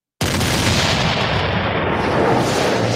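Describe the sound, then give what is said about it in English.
Cannon fire erupts suddenly after a brief silence and keeps rumbling loudly for the rest of the moment, a dense, continuous barrage of booms with no voices. “Christopher Cole, let's go fire those cannons.”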